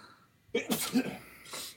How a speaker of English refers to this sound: Hold on, I got to sneeze.